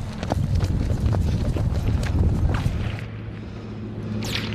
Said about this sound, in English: Our team ran for cover. You can hear the snap of the bullets.